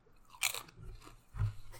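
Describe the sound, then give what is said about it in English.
A crisp sweet chili corn chip is bitten with a sharp, bright crunch, followed by a second, heavier crunch about a second later as chewing continues, with no talking. “Like so, I don't really taste the sweet chili.”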